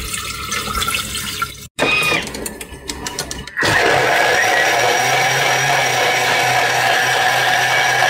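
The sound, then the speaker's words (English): A kitchen blender runs loudly, blending sauce ingredients (salt, garlic, cumin, turmeric, oregano and 650 ml of water): a continuous whirring churn with a momentary cut early on, then a steadier, higher, smoother roar that holds to the end. No one speaks. “It's all blended up, so I'm just going to cook this for 7 minutes.”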